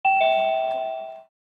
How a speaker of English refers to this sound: Did we get a doorbell installed? Because I don't know that we need a doorbell, but it makes a noise